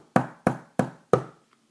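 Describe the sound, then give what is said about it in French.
Four firm knocks on a wooden door, evenly spaced about a third of a second apart, resonant, with no voices around them; in the Three Little Pigs tale, the big bad wolf knocks on the door of the pig Nif Nif's house. “Un matin, Nif Nif entendit frapper sur sa porte.”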